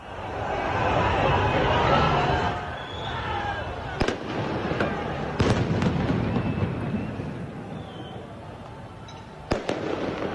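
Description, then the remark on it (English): Scattered sharp cracks of fireworks and gunfire pop over a loud, roaring crowd at a rally, with a handful of distinct bangs spaced irregularly and one cluster of quick reports near the end. “That's gunfire. Some of it. Fireworks.”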